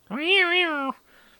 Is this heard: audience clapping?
no